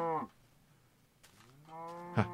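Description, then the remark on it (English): Two drawn-out cow moos, one fading at the start and another rising near the end with a brief thud, separated by a quiet pause; moderately loud with no talking. “Hold on, cows.”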